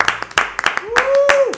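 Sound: hosts applauding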